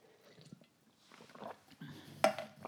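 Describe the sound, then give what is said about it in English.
Quiet sips and soft slurping from a cup of coffee, with faint breathy noises, then a sharp ceramic clink as the cup is set down near the end. “So I'm going to take a sip of this coffee I just discovered.”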